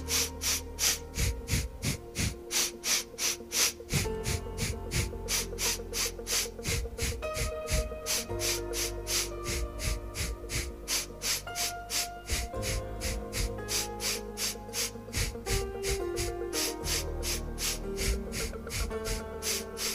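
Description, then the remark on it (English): A rhythmic breathing exercise of four in-strokes and four out-strokes: quick, forceful breath strokes repeat in a steady, rapid pulse for the whole stretch, clear, over soft sustained background music with no talking. “for you to practice the silly breathing technique. And now we're going to begin. 4 in strokes, 4 out strokes.”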